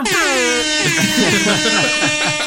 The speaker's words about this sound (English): Put some air horns here.